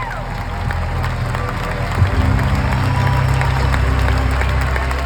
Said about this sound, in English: He's really captured the crowd and my heart all weekend long, not only finishing in second place, but I literally had goosebumps when the crowd erupted when he was named the most improved athlete across the entire competition.